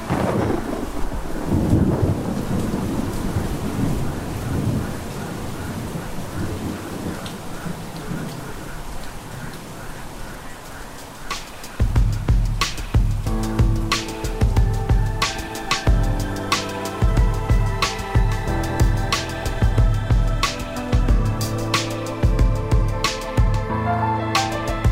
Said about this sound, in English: Something that just gets in your bones about being around storms and being around thunder, the noise, the rumble, I miss it.